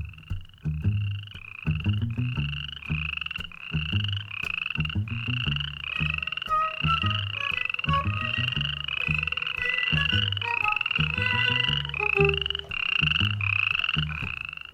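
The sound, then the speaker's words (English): A dense chorus of frogs croaking continuously, rapid overlapping calls with a steady pulsing rhythm, loud, with no voices. “It's the perfect home for frogs”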